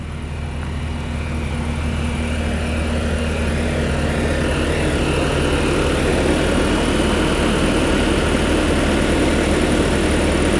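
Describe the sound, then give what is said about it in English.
Idling trucks outside a house, heard from inside during street replacement work, drone steadily throughout, a constant low engine rumble with a throbbing hum and broad noisy wash that never lets up. There is no talking. “Idling trucks.”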